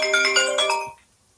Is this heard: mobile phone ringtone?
yes